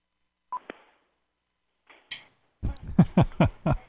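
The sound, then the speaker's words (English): One short electronic beep near the start, followed by a faint click, some rustling, and then a voice talking; the beep is a cordless phone's low-battery warning as its battery dies. “I'm hearing a beep, and that beep is the battery on this cordless phone dying.”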